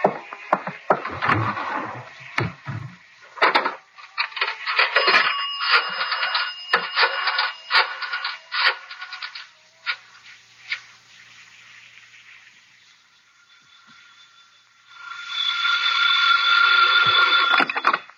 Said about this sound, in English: I got to make a phone call. There's a booth. It'll only take a minute or two.